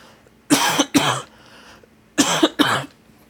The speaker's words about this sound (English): Hang on one second. I have a lovely cough here.